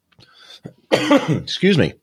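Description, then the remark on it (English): A fit of coughing: a few faint, breathy hacks build into two loud, harsh coughing bursts in quick succession, with no talking around them. “I'm having a coughing attack.”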